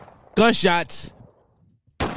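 Two sharp, loud gunshot blasts from a sound-effect drop, the first following a brief harmonic vocal-like sound and the second landing after a short pause, each ending in a quick burst of noise.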